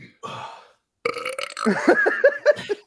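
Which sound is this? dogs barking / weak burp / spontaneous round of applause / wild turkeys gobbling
weak burp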